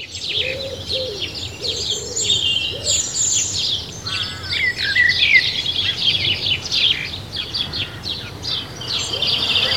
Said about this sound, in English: The birds on the Ashdown Forest, while often quite difficult to see, are really a special lot.